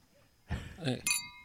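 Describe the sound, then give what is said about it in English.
A bright, ringing clink of glasses touching together in a toast, heard right after a brief burst of voices and movement, its high tone lingering for a moment. “where's the cheers? Guys. You meant to cheers him.”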